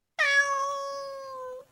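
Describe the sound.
A single long, drawn-out cat meow, loud, holding a steady plaintive tone for over a second before tapering off, with no talking around it.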